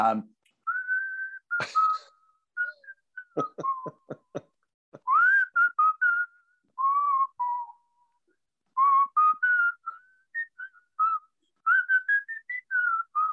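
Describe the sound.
A person whistles a song melody up close, clear and fairly loud, in phrases separated by short pauses, with a few sharp taps early on.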